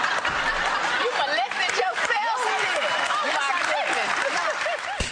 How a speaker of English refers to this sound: People are applauding that.